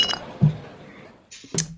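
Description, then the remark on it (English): Glass bottles of Blue Moon beer clink together in a toast, a few short knocks and then a brighter ringing clink near the end, with no talking. “but then I decided I'd just go with whatever I got in my fridge right now, which is some Blue Moon.”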